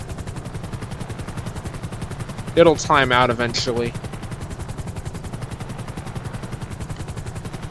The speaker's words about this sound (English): Land low, air ambulance, land low. There you go, air ambulance. Squeeze in there, dude. Squeeze in there. Come on, air ambulance. Get in there, dude. Land low.